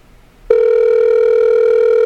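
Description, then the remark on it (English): After a brief quiet moment, a Skype outgoing call tone kicks in abruptly: a loud, steady electronic hum that holds unbroken to the end, with no voices. “I'm going to call Fish Patel back there. Get a better connection on the old Skype-a-rooney.”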